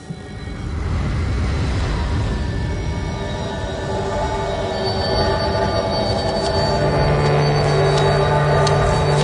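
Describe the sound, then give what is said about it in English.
A train rumbles past with sustained, high-pitched metallic squealing from its wheels grinding on the rails, loud and continuous, with bright screeching tones rising toward the end. “Train.”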